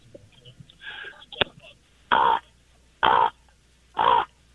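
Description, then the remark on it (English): A person's voice imitates a raven's croak: three loud, harsh caws in an even, one-per-second rhythm, after a brief stretch of low murmuring and a sharp click. “My impression is a raven.”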